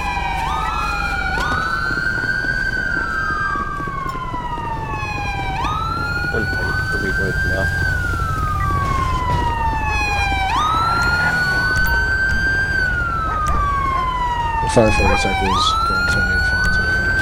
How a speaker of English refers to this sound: Let's go ahead and get a siren check.